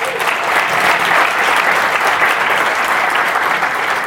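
A crowd claps steadily in dense, continuous applause that holds at an even, fairly loud level for the whole stretch, with no voices rising above it.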